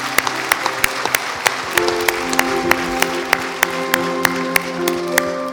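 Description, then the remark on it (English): An audience gives God a round of applause, clapping in a steady, even rhythm, sharp claps landing about three per second over a hiss of crowd noise, while sustained musical tones swell in underneath partway through. “Hey, can we give God a round of applause for what he did in this place?”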